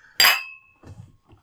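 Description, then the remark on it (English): A single bright clink of wine glasses holding 1998 red wine touching in a toast, loud, its clear ringing tone lingering briefly before fading, followed by a few soft low thuds. “Game cheers.”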